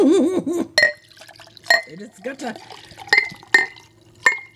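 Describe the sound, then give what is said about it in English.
Sherry being poured from a bottle into a glass, with several sharp glassy clinks as the bottle taps the rim. A person speaks briefly at the start, and the clinks ring out clearly. “Listen, I'm back and I'm out, so pour more!”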